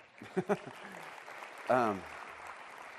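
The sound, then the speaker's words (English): An audience claps steadily for about three seconds, a dense, even wash of applause, with a couple of brief vocal bursts and a short rising cheer partway through. “Yeah, you can clap.”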